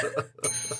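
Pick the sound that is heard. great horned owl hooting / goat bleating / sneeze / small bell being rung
small bell being rung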